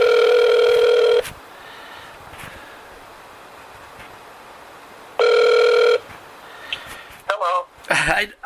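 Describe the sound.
A telephone dial tone after a dropped call: two loud, steady electronic tones, one lasting about a second and another shorter one a few seconds later, with quiet line hiss between and a voice briefly at the end.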